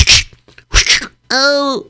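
A voice imitates two whip lash strikes with sharp, hissing bursts about half a second apart, loud, then lets out a short, strained pained cry.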